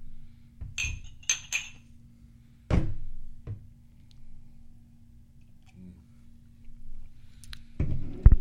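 Glasses clink together in a toast, a quick cluster of three bright, ringing taps, followed by a few duller knocks like glasses being set down on a table.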